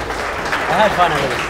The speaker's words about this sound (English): With that word, one last round of applause. That was phenomenal. Thank you.